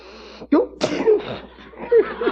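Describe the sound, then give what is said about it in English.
Several loud, sharp sniffs through the nose in uneven succession, mixed with short breathy, slightly voiced snorts and murmurs, with no clear words spoken, as someone sniffs the foamy head of a glass of Pabst Blue Ribbon beer. “Now, sniff.”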